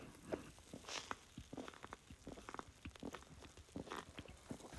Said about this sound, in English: Hold on, let me drink my Coke. I need a sip. I've been craving this.